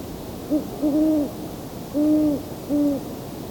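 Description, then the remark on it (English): Several owl hoots from both male and female owls sound in a loose series, a short note followed by longer, rounded ones with a slight pitch rise and fall, moderately loud over a soft, steady background hiss. “Some of the best hooting was during that chorus, coyotes, but I had to be facing the wrong way with the microphone.”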